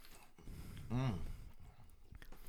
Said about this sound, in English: Are we not supposed to be chewing on mic? Kind of.